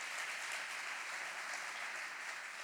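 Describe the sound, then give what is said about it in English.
A crowd of people giving God a big round of applause together, a dense, steady patter of many hands clapping that keeps up evenly for a few seconds, with no voices over it. “Give God a big round of applause.”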